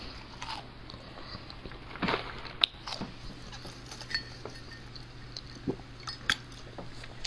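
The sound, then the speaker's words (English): Wet, squishy chewing of a chicken sandwich on Super Bowl Sunday, with irregular soft bites and smacks over a low steady hum; a few sharper clicks stand out, and no one talks. “I'm sorry, I'm eating a chicken sandwich.”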